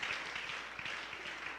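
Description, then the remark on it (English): A church audience clapping their hands together in a dense, sustained burst of applause, many overlapping claps blending into a steady wash with no voices standing out. “Come on, jump your feet and clap your hands and shout, I am the church of God.”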